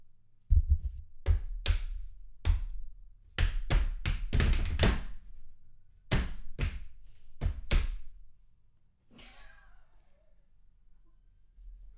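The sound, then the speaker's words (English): A person walks away toward a door, heavy footsteps thudding across a hard floor, about a dozen uneven steps with short pauses, getting lighter toward the door, followed by a softer brushing or shuffling sound near the end before things go quiet. “His steps get real light as he gets towards the door.”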